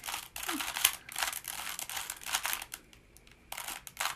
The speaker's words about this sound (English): No, it was a Rubik's Cube, and I solved it, almost. You did? I was so close, I just needed one more side.